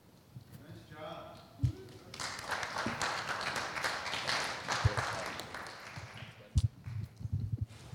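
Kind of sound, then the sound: crowd, clapping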